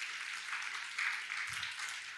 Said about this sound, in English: Clap for my mother and my father.